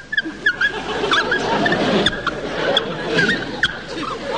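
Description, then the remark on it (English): A film sound effect of a bat: a run of short, high, chirping squeaks repeating irregularly over a steady rushing noise with a faint murmur beneath, some squeaks sharper and louder than others. “Did you notice the sound of this bat? That was weird.”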